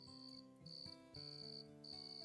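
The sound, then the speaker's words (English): Shrill crickets trill in pulsing bursts that swell and pause, then return, a steady high-pitched chorus over a faint low hum of night ambience. “Cricket chirps rose into random choruses, then fell silent, only to rise again with the regularity of waves washing ashore.”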